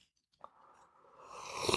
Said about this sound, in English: Let me sip on my coffee.